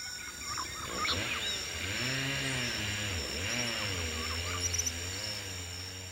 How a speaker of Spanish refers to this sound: En la noche, oyeron un estruendo parecido al de una motosierra.